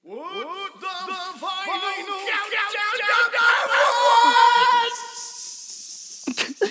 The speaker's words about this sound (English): I have a feeling you didn't know what you were going to say when you started yelling.